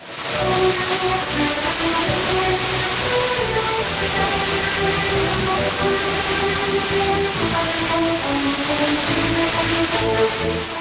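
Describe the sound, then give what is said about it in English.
A muffled shortwave AM broadcast from a deliberately chosen weak signal, received with old envelope detection. It is thin and band-limited, with a constant noisy hiss and a warbling, smeared distortion from selective fading that shifts in and out as the carrier strength goes up and down. Tones run continuously throughout. “Listen closely and you'll hear the distortion as the strength of the carrier goes up and down.”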